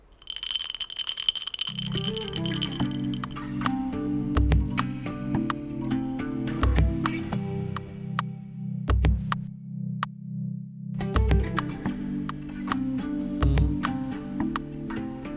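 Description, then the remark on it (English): Glassy clinks of ice knocking in a glass as a drink is poured ring out in a steady rhythm over a low, sustained bassline, forming a looping beat-like pattern. A bright tone opens it, and no one speaks. “Glass, ice, pour.”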